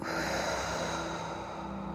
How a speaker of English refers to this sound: Close your eyes. Take a deep breath in through your nostrils and out through your mouth.